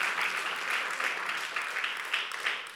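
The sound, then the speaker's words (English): An audience claps together in a steady, dense wash of applause that holds fairly constant for a few seconds, with no voices standing out above it. “When the breath of God hits a home, when the breath of God hits an area, when the breath of God touches a church, oh, you ought to clap like you agree today.”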